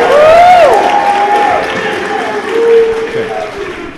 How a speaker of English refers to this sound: Everybody give … a round of applause.